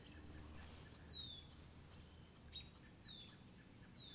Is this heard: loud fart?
no